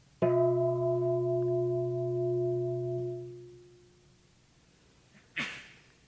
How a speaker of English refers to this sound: So I want you to try to connect with the sound just as I ring this bell. The sound is our object, very simply.